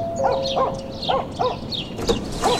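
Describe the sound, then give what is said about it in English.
A dog named Benji barks repeatedly at Number 1, Duke Street, about six sharp, fairly high-pitched barks in an uneven rhythm, moderately loud, with a faint steady hum in the background and no talking. “Oh, dogs, eh? You have to love them, but they don't have to make a mess.”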